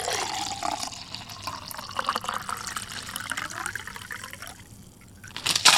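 Liquid pours steadily into a pint glass, a gurgling, splashing stream whose tone rises gradually in pitch as the glass fills, ending with a brief louder splash. No one speaks.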